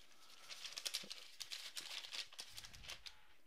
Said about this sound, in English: That's legit paper opening there.